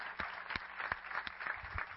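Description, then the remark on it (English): A crowd applauds steadily for standing military service members, police officers and firefighters, many hands clapping in a dense, continuous patter with a few sharper claps standing out, fairly soft overall and with no voices. “Stand as we clap for you.”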